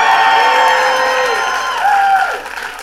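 An audience applauds and cheers loudly at a mention of Mar-a-Lago being searched, with whoops and shouted voices rising over sustained clapping for a few seconds before it starts to fade.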